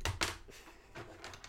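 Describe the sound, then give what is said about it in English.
A pen accidentally knocks against a microphone while grabbing a pencil: two sharp taps with a low thump come first, then a few softer clicks and rustles follow. No one is talking. “And I accidentally hit the mic with my pen.”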